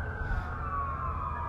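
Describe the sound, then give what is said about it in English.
A fire truck siren wails in a long, steady tone that sinks slightly in pitch as it passes, moderately loud over a low rumble of street traffic, with no voices. “Fire truck just went by.”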